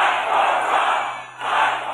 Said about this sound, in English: more than 10,000 or so people, and it's so loud when the president introduces Senators Perdue and Leffler, you can't even hear what the crowd is chanting. And I have to find out afterwards, they were chanting, fight for Trump, fight for Trump.